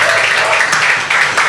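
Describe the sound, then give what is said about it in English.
An audience bursts into applause for a woman who has just spoken, a dense, steady wash of many hands clapping at once, fairly loud and sustained through the whole moment with no voices on top. “Can we clap for her, please?”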